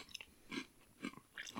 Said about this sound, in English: This is kind of like eating a super stale French fry. Yeah. Not chewy, but weird. Like a crunchy French fry.